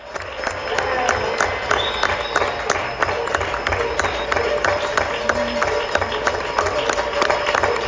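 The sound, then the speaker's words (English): Many people clap steadily from balconies on a street in the centre of Madrid, Spain, at 8 o'clock in the evening, the sharp claps echoing off surrounding buildings, with scattered voices and faint cheers mixed into the sustained, fairly loud applause. “Here's a little clip of us clapping.”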